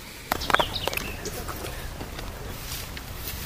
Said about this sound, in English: Did you see that some bird just about hit the roof of the car? Well, where? Oh, geez. No, I know. I heard it. I think it did bounce off the roof. What was it? Well, judging by how things are going, it was a yellow warbler.